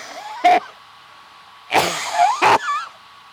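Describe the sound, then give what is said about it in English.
A harsh, raspy cough rings out once, then after a pause two more rough, wheezy coughs follow close together, loud and strained with a hoarse, throaty edge, and no talking. “I can kind of let me hear you cough. It doesn't sound good.”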